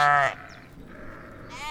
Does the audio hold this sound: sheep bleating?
yes